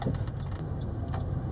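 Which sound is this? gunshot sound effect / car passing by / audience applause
car passing by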